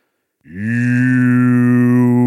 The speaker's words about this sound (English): This is his head, and a low bass tone, like a voice singing through a distant tube, joins the breathing of the cave as it carries through the hollow wood and shakes the dust from the walls.